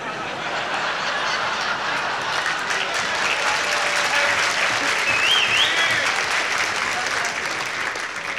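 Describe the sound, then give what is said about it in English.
Sustained audience applause, a dense, steady wash of clapping that holds at an even loudness for the whole stretch, with a few faint whistles rising above it midway. “I'm not too sure whether you applauded for Dean or we should stone some more embassies.”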